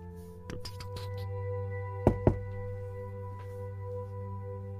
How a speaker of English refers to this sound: You hear a knock at the door.